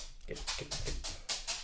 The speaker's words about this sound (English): Here comes the dog. How'd you get down here? So loud.